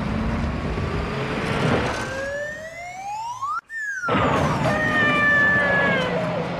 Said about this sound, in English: And it had there's like this slide whistle that goes like, yeah. as it makes the noise.